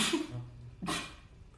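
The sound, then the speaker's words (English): A sneeze: a breathy, voiced intake followed after a short pause by a sharp, hissing burst of air, with no talking around it. “Bless you.”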